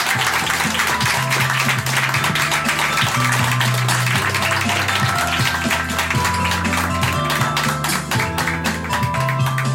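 Sustained audience applause, a dense wash of many hands clapping at steady loudness for the whole stretch, with no voices standing out above it.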